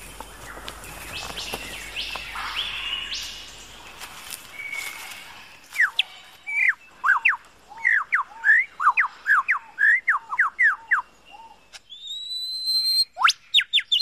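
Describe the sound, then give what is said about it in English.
A male superb lyrebird in a forest in Southern Australia sings alone, starting with a dense, varied jumble of mimicked calls, then a loud run of rapid, repeated whistled notes in quick bursts, ending with high, sharp piercing whistles. “The superb lyrebird of Southern Australia.”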